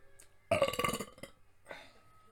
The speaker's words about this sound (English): Someone should set up a burp counter for me. Yeah. I think I'm at 3, but... I haven't been keeping track.